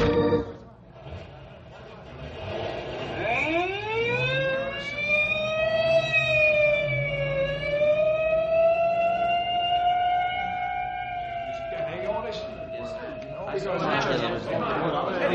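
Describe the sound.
An ambulance siren winds up from low to a loud, steady, high wail, holds for several seconds, then cuts off, leaving a noisy rush at the end; voices murmur in the background.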